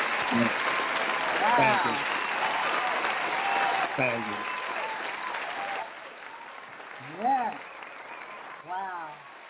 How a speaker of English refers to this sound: I'm going to give you a great applause. Keep on doing this.